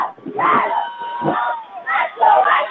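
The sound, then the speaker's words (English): A stadium crowd of OFA supporters at a football game at Baller Field in Middletown cheers and shouts from the stands, the roar swelling in several waves with scattered voices rising above the din. “A good showing from the OFA crowd.”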